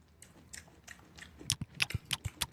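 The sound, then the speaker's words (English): A woman chews crunchy cereal with her mouth audibly working, starting with soft, wet munching and building into a rapid series of loud, sharp crunches. No one speaks. “Even when you can hear her put the cereal in her mouth and it's like.”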